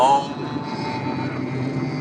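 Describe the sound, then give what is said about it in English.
Several people in a car hum together on one sustained note, trying to hum at the same frequency, forming a steady, buzzing drone that holds at an even loudness for about two seconds. “Let's all try to hum at the same frequency.”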